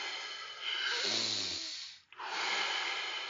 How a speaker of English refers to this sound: Breathe in, breathe out, breathe in, breathe out. In with peace, out with stress. Fully in and letting go.